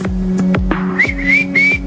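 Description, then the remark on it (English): A man opening a door on a Sunday morning gives a series of short, rising whistles to call another person as if calling a dog, repeated three times over a steady low engine-like hum with a few sharp clicks. “he opens the door and like whistles for Uncle Bo like he's a dog”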